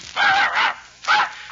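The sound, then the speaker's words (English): A blue-eyed dog called Blue Eyes barks sharply three times in quick succession, loud, with short pauses between the yelping barks and no talking. “You sure you don't want that blue-eyed dog?”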